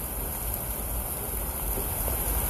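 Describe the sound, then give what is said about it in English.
Steady rain falling continuously, a dense, even hiss with soft pattering throughout and no voices, heard at a moderate, unchanging level. “Keep your eyes closed as you listen to the rain in the background.”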